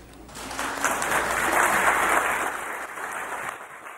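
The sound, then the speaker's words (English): A crowd claps steadily, a dense wash of many hands that swells through the middle and tapers off toward the end, with no one speaking over it. The audience stands and applauds the men and women of the Cayman Islands Fire Service. “I ask that everyone stand and join with me in a round of applause for our heroes, the men and women of the Cayman Islands Fire Service.”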